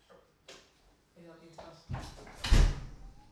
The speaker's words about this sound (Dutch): Deur even dicht.